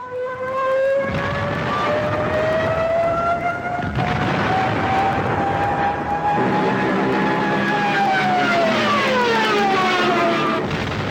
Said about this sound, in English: They called them Jericho trumpets. They were specifically designed to cause terror and panic in the enemy. Every time a Stuka dove down at a target on the ground, their trumpets filled the air with high-pitched screeches.